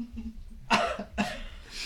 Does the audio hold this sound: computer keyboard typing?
no